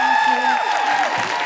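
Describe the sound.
An audience bursts into sustained applause, dense steady clapping mixed with high whoops and cheering voices that rise and fall throughout.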